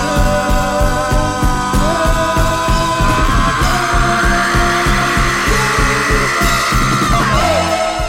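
A long, drawn-out sung scream rides over loud, heavily distorted bass and pounding rhythmic low end, the raw voice sustaining steadily through the dense, saturated mix, layered with other vocals as the cathartic climax ending an album.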